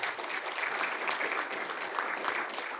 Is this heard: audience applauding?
yes